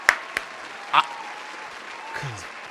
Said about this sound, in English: Dude, you did such a good. Give this man a round of applause, ladies and gentlemen.